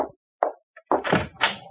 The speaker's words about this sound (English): Caesar, open the door! We have guests!